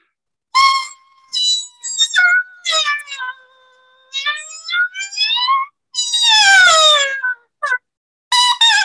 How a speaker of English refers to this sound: I'm going to back up. It's going to sound like a duck being choked. Mm. And I'm going to show you how many different pitches I can get just on the mouthpiece.